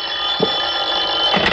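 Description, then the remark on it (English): A telephone bell rings in a steady, loud metallic trill that carries on without a break, bright and high-pitched, with no voices over it. “Just sit there until I answer the phone.”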